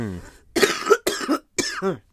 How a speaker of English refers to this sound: It's all this dirt in Utopia that's making me cough. It's getting up your nose. You're all bunged up.